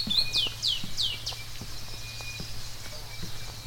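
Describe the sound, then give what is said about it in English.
Steady footsteps on a brick pathway at dawn, crisp, walking at an even pace while a bird chirps a few quick descending notes at the start over a low background hum. “Sound of my footsteps on the brick pathway.”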